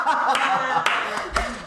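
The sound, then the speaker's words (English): A sharp, loud hand clap cuts through laughter and chuckling, with a few fainter slaps around it in a brief, lively moment. “Sorry, that clap was too loud.”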